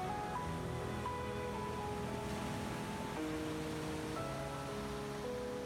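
A steady wash of ocean surf rolls on continuously beneath soft, sustained musical tones that shift pitch a few times; no one speaks and the level stays even throughout.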